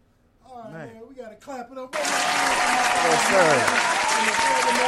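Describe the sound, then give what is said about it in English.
A man speaks briefly at the end of an interview on a show, then loud, dense applause erupts and continues steadily to the end, a broad hiss of many clapping hands. “All right, man, we got to clap it up.”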